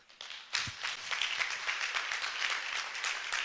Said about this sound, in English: And you can clap.